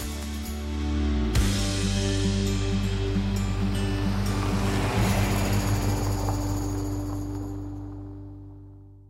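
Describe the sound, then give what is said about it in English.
A steady roar of surf washes over a sunny Gold Coast beach on a Monday morning around 9 a.m., swelling and fading with the waves, while a low droning engine-like hum runs underneath. No one speaks. “We just met the Gold Coast Open Water Swimming Club down at the beach on a Monday morning.”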